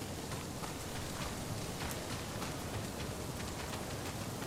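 Video game character footsteps tap out a steady, fairly even rhythm of soft, crisp steps over a constant rain-like hiss, with no voices present.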